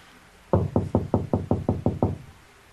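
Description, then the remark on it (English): A quick run of nine firm, evenly spaced knocks on a bathroom door from inside, with no voices, just quiet room tone before and after. “I'm not knocking on the door anymore. I'm knocking on the bathroom door.”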